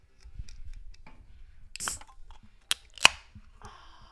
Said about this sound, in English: Got a little White Claw here. Hold on. Let me open this up so you guys can hear it.